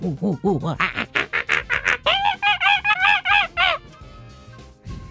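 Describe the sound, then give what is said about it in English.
A person imitates an angry monkey with a rapid series of loud, harsh, rising-and-falling hoots, the calls quickening and climbing to shrill, piercing shrieks before trailing off. “You want me to give it to you like the monkey's angry?”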